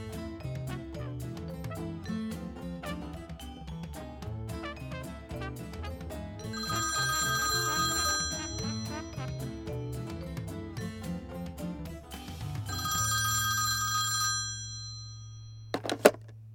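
A telephone rings in two bright, trilling bursts over a busy musical backdrop, then the ringing stops as voicemail picks up and a low sustained tone holds, ending with a couple of sharp clicks.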